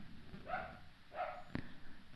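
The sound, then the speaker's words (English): A dog barks twice, about half a second apart, each bark short and fairly soft, followed by a brief sharp click against a quiet background. “Oh, dog.”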